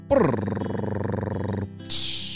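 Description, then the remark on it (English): A drumroll celebrating a child's sixth birthday: a fast, even rattling roll of low rumbling beats lasting about a second and a half, then a brief pause and a bright, hissing crash-like burst. “Drumroll please.”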